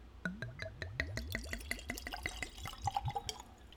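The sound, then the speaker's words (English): A drink glugs from a bottle into a glass, a rapid string of gurgles whose pitch rises as the glass fills, then a few trailing splashes. No one speaks. “But got my nose and glass, so let's give it a pour.”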